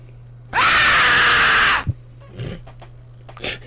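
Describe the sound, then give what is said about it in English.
A loud, piercing scream sound effect, used as a shop-entry soundbite, blasts out for over a second, bright and harsh, then cuts off, followed by a few faint breathy rustles and small vocal noises. “People walk in, that is the ding-dong, is just the scream.”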